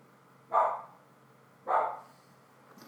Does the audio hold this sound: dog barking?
yes